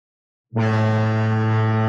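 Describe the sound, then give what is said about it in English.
After a moment of silence, a deep foghorn blast sounds, loud and steady. It is one low, buzzing, sustained note that holds unbroken to the end, with no voices. “They wouldn't have had a foghorn.”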